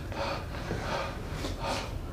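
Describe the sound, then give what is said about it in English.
A voice imitates heavy panting: several rough, breathy huffs in a quick uneven rhythm, loud and wordless, with no other sounds around it. “and as he like reaches the door and slams it shut, like panting behind himself.”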